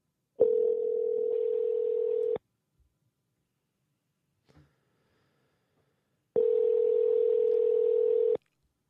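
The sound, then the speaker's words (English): Two long, steady ringback tones on an outgoing phone call, each lasting about two seconds with a pause of silence between them, loud and clear with no one speaking. “He's a good dude, and I'm going to call him, and hopefully he's going to pick up.”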